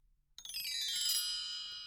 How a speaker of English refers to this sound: Ah, it sounds like a pristine recording of a bell tree, an orchestral instrument? Yes, I actually went to a bell orchard and there were a number of bell trees growing in the orchard and I found a hearty bell tree to make a recording of.